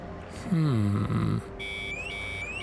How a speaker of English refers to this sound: Hear that, friend? That's the cult alarm. It goes off in my head when I'm near a cult.